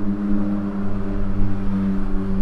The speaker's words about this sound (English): That was a trike, not necessarily a motorcycle, but a trike. So it was much different sound.